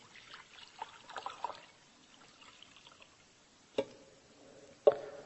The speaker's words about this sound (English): Because for me to scoop a scoop of water up in my hand I can't even quench my thirst with the amount of water that I can scoop with one hand.